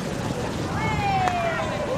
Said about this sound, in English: These are the sounds you might hear strolling through Montreal's labyrinth of underground corridors that connect the city's subway stations. They're lined with boutiques, cafes, fast food joints, and even art museums,